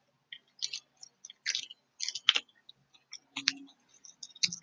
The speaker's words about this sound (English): Well, I grab a drink of water because it's going to take a lot of air, and I'm short of air right now.